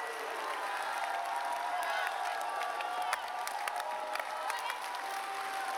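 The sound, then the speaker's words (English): An audience claps and shouts for the Lord together in a steady, sustained wash of applause, with scattered sharp claps and raised voices cheering throughout. “Come on, give the Lord a clap and a shout in here.”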